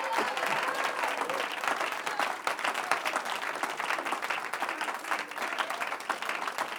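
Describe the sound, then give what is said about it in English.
An audience claps hands in sustained, dense applause that fills the room steadily for several seconds, with a faint murmur of voices mixed in beneath the clapping. “Oh, somebody ought to clap your hands and lift up your voice.”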